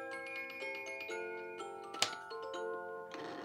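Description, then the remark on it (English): A mechanical clock ticks steadily, with rapid crisp ticks over a sustained ringing hum of tones, plus one sharper, louder click partway through. No one speaks. “hasn't always been obsessed with clocks”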